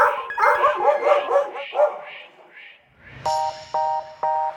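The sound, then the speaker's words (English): A quick flurry of several small dogs barking and yipping, a grandma's four dogs, followed by three evenly spaced electronic beeps. “Emery says their grandma has 4 dogs, so they want a robot to walk all of them.”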